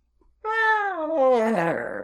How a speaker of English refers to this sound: It sounded like a robot cat. I don't know what it sounded like.